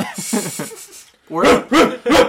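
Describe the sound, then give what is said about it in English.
A person imitates a dog, giving three loud barks in quick succession right after a brief stretch of voiced sounds. “Get in the bark, wolf.”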